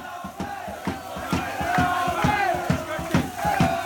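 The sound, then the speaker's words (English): A crowd of supporters shouts together in a loud, steady roar, with rhythmic bursts roughly every third of a second, like chanting or clapping, running throughout. “Okay, that's shouts from the shout end.”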